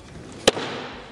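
A single hard gavel strike by Speaker pro tempore Patrick McHenry, ending a session of the U.S. House, cracks sharply against a wooden block, loud, followed by a brief ringing decay.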